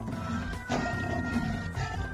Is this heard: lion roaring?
yes